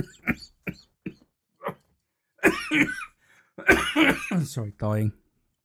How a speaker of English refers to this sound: Sorry. Bloody hell. That was me trying to laugh and got into a coughing fit.